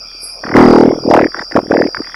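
A loud, sputtering fart sound effect: one long, rumbling blast followed by a string of shorter, choppy bursts, prominent with no talking over it.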